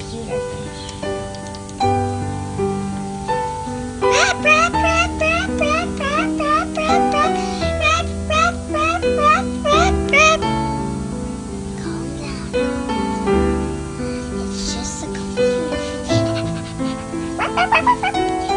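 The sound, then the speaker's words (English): A dog named Skip barks and yelps at a fish tank in rapid bursts, fairly loud, with whiny, panting sounds in between, carrying on for the whole stretch without any talking. “Likes the bark at the fish tank, and this is what it sounds like all night.”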